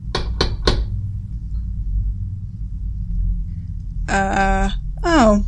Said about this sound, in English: There's a thing called knocking, you know. I did twice. No one answered, so I thought you didn't hear me.